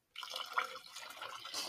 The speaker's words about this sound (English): Sorry, more noise. You know what this That's is? That's her pouring a drink. That's not me peeing.